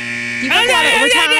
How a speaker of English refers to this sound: Timer went off. Gosh darn it.